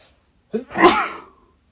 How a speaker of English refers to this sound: As you can tell by that sneeze. I just didn't feel great.